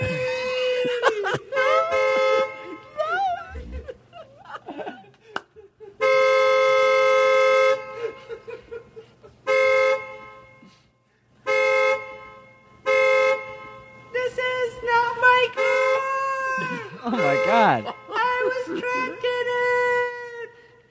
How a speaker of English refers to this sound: He keeps beeping his horn like that.